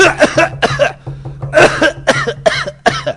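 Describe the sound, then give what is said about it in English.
A person fakes a run of coughs, about seven harsh bursts in quick, uneven succession, loud, with a faint steady hum underneath. “They were coughing a lot. So it was going...”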